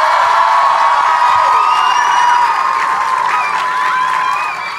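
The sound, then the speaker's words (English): A crowd claps loudly and steadily, with cheers and high, rising whoops and whistles mixed in. The applause holds for several seconds and then starts to ease off at the end. “wait, okay, you guys give her a huge, gigantic hand.”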